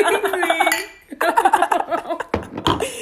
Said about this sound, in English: We have a whole cup of wine here. Clink, clink.